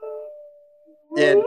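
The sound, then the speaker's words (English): A person imitates a wolf howl with one long, steady note that slowly fades over about a second, then a sudden louder burst of voice cuts in. “Let me hear a little howl from you”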